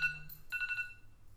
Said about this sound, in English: Sorry about that. I'm starting early in the morning. I didn't realize my alarm clock was going off.